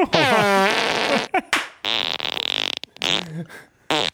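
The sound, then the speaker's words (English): Several loud farts in a row, starting with a long, tight, squeaky one that wavers in pitch, followed by shorter sputtering bursts and a raspy, buzzing stretch, with no talking. “How does an asshole that sounds that tight produce Coke can size shit”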